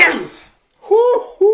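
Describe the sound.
A single sharp sneeze bursts out, followed after a brief pause by a voice calling out excitedly.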